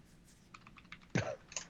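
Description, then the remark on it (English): Rapid, furious clicking of keys on a computer keyboard as someone types, a quick burst of crisp taps ending with a heavier, louder key strike and a few final clacks. “He's typing furiously.”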